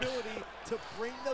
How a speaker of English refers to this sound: Listen to this slap.